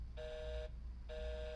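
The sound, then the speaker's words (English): A telephone busy signal after dialling an 815 number: two evenly spaced electronic tone bursts, each about half a second long with equal gaps, steady and clear over a faint low hum. “It's busy, man.”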